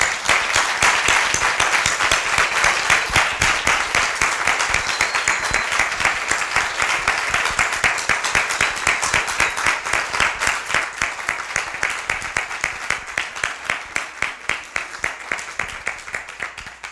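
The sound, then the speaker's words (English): A crowd gives a man a round of applause to acknowledge what he has done, clapping steadily for about seventeen seconds, a dense crackle of many hands clapping at once that holds strong before slowly thinning toward the end. “And I would ask you to join me in giving him a round of applause.”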